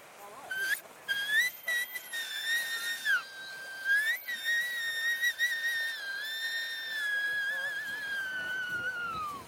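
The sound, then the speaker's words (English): A breathy, reedy whistle blown through the broken-off tip of a wet, spongy seaweed pod, played sideways at an angle like a cross-blown flute. It starts with a few short chirps and sliding pitch, then holds a long wavering tone that slowly falls and fades. Clear, no talking. “you get lots of them are long and clumps of seaweed, and you can just kind of break off, using your fingernails, break off the little tip, and you have like this kind of little whistle really, like a little ball that whistles.”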